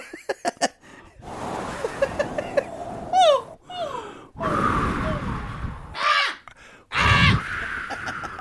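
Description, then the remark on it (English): A person imitates a crow with several harsh, rasping caws, each a short loud burst, with breathy gasps and laughter-like sounds between them and no clear words. “It was a good crow.”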